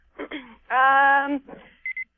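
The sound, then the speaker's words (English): A phone's low-battery warning sounds during a phone call as a quick burst of short, high-pitched beeps near the end, following a moment of someone talking and a sustained vocal tone. “Oh, my battery. Oh, is that what that is?”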